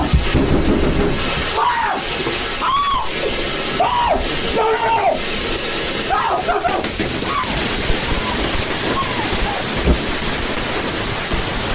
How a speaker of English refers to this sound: Yes, he's yelling for the fireworks to stop, which, you know, it's not Alexa powered. It's not a smart firework display.